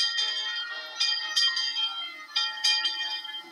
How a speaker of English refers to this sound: This one is entirely black and shiny red, and as it passes slowly into and out of your line of sight, its bell rings, welcoming you.